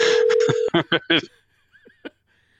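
Dial-up modem tones: a steady high tone and screechy burst, then several rapid pulsing chirps and warbles that fade into thin, quieter bleeps before stopping.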